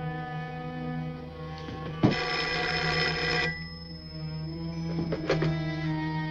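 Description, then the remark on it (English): A telephone bell rings once in a loud, rattling burst lasting about a second and a half, over a steady humming background, followed by a few fainter jingling clicks. “Your phone.”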